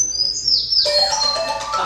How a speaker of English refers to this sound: It's a bird.